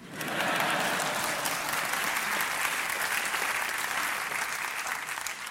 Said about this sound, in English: You can applaud.